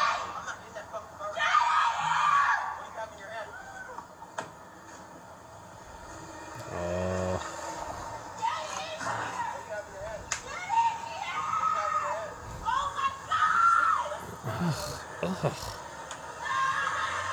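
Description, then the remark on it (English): In a played video, a woman screams in shrill, repeated bursts that rise and fall over several seconds as she drives off, mixed with other raised voices and some background commotion. “She drove off screaming.”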